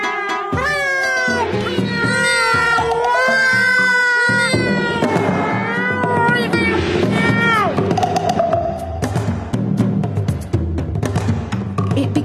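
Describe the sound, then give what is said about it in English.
Loud, ferocious screeching and yowling in a frantic commotion around midnight, rising and falling wails overlapping with harsh snarls, sniffing and scratchy noise throughout, with no talking. “Loud sniffing and scratching noises, which was followed by the most terrible screeching and screaming.”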